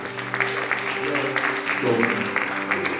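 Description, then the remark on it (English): An audience breaks into a steady round of applause, dense overlapping clapping that holds at an even, fairly loud level throughout, with a few voices cheering underneath. “How about we give that a round of applause?”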